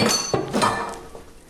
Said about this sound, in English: While that's cooking, I'm going to drain the chicken through a colander just to get rid of the excess marinade.